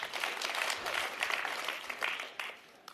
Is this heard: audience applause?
yes